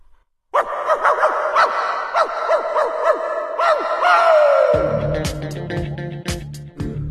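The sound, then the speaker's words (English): A dog barks in a rapid, steady run of short, high yelps, about ten in a row, that end in a drawn-out whine as a low droning hum starts underneath. “And the other is to bark your head off. On this occasion, I took the second option.”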